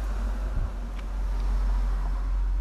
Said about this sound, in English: sorry, there's a car.